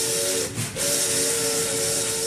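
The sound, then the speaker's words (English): A loud steam train whistle blows a steady, chord-like tone over heavy hissing steam, breaking off for a split second before sounding again, strong, with no voices, as Truman's campaign train, the Truman Special, pulls out of Washington on a 16-day coast-to-coast tour. “A 16-day coast-to-coast tour lies ahead as the Truman Special pulls out of Washington.”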